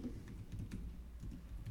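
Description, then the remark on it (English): Quiet, rapid typing on a computer keyboard as someone enters football match picks, with soft clicking keystrokes tapping in an uneven, steady stream, fairly faint, with no one speaking. “I'm already typing it because I already know that's what you were going to pick.”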